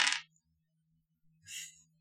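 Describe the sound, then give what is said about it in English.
Two short bursts of hard clattering as four dice are re-rolled across a tabletop, a loud rattle at the start and a softer second roll about a second later, with a low hum underneath. “So I can re-roll the 4 dice.”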